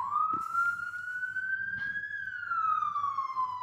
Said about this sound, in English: Was it a police car? It was very small. Yeah, I think it was a police car. But it went way on the other side of the street.